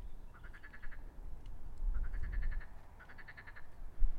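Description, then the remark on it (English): Three bursts of rapid, guttural cackling from a marsh frog, each a quick rattling series of pulses, loud over a low rumbling background. “I love that laugh. It's quite guttural. It like really comes deep down. They kind of cackle.”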